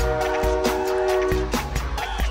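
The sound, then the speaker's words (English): A train horn blares in a steady chord over the rhythmic clack and rumble of a rolling train, loud, with no one talking. “Do a little like, come on, ride that train and ride it. Woo, woo!”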